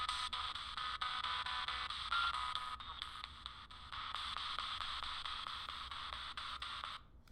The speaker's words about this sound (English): Still hearing some of the computer interference.